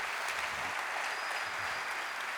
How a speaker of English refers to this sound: And the Bible says that instantly God healed him. Can we give the Lord a clap for that, please? Instantly.